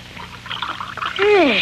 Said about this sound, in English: Now, get the rest of that liquid out of the kettle and into the glasses.